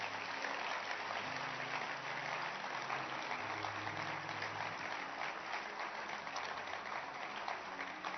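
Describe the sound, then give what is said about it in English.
An audience claps hands in a dense, steady wash of applause lasting several seconds, with low sustained musical tones shifting pitch underneath. “You can clap your hands.”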